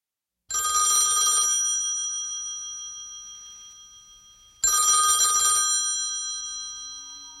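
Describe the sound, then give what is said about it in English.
An old-fashioned telephone bell rings twice, each burst a loud metallic clatter about a second long that hangs and fades in a ringing tail, with a pause of several seconds between rings. “He received a call one night, and the central office operator said it was coming from one of the cemeteries.”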